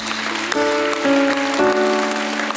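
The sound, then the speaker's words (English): An audience gives God a hand clap after a prayer of repentance, a dense, continuous wash of applause, while sustained organ chords hold and shift underneath. “Go ahead, give God a hand clap.”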